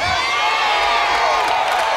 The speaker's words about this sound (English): Now for those of you who wonder why these people are standing up shouting, it's because if you really believe that, anytime I said, thus saith the Lord to his anointed, you'd slap somebody next to you and say, excuse me, but he happened to be talking